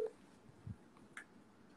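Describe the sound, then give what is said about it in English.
A few brief, faint electronic tones like telephone keypad dialing beeps, from a prank call being placed to Corey Funk of the Funk Bros, spaced apart over quiet background noise, with no one speaking. “we're gonna prank call Corey Funk right now.”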